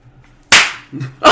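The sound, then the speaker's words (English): A loud, sharp slap cracks with a quick ringing decay, followed about a second later by a second sharp smack. No one speaks. “Well, if you promise not to slap me again, I will tell you that I can take you to them.”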